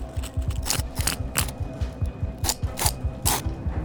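Pieces of flint struck together again and again, making sharp, bright clicks at an uneven pace, about seven loud strikes mixed with softer ticks, with no voices.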